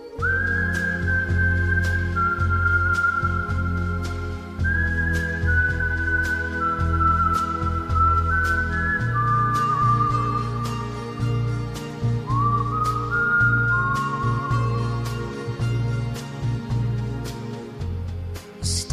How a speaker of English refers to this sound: Is such an iconic start, and that kind of whistle